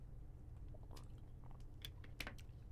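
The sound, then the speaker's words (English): Wet chewing of raw ginger, with a few sharp crunchy bites and squishes over a steady low hum. Irregular mouth sounds spread across a few seconds, with no talking. “That was bitter. I mean, it's raw ginger.”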